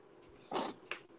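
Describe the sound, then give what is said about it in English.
Two short, soft bursts of mouth noise as someone chews food with a sauce tasting like peri-peri sauce, with a quiet gap between them and no talking. “Nah, that's what I'm eating right now.”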